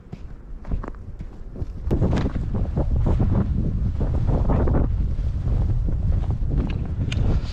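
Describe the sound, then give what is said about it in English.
Strong wind buffets the microphone outdoors, a loud, continuous low roar with gusty surges and rumbling bursts that swell after the first couple of seconds and stay heavy throughout. “Lots of wind here today.”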